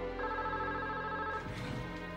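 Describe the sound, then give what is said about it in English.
A telephone rings with a steady electronic tone that holds for over a second, then breaks into a busier, warbling pattern, a call from the interviewee's wife interrupting a police interview. It is fairly loud, with no one speaking. “The interview was interrupted by a phone call from Elkins' wife.”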